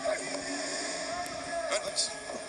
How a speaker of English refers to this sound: Another truck pulling up to Daly's place.